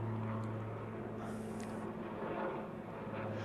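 A TV news helicopter drones steadily overhead above a church in Alhambra, a low, continuous engine hum with a broad rushing wash, unchanging throughout, with no voices.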